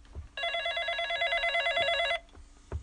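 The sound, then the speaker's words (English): A telephone rings in one sustained, trilling burst lasting almost two seconds, bright and buzzy, with faint thumps and room noise before and after. “I don't want your phone to ring.”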